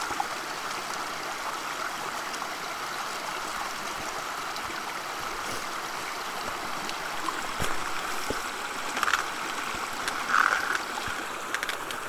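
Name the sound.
stream water flowing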